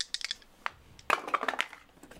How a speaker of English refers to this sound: Okay. I'm always going to roll 2 dice.